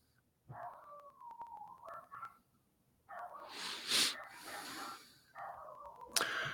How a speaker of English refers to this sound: Oh, man, neighbor's dogs are going crazy.